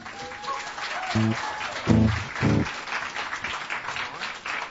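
A crowd at the Hideaway applauds steadily, welcoming two performers to the stage for the first time: a dense wash of clapping lasting the whole stretch, with a few brief cheers or whoops rising above it partway through.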